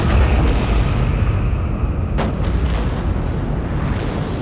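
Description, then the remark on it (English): Massive thermonuclear explosions from detonated drones destroy ships, roaring in a continuous, loud, deep rumble, with sharper blasts cutting through about halfway and again near the end. No voices are heard. “In a moment that was equal parts rage and meditation, I detonated each drone's thermonuclear explosive.”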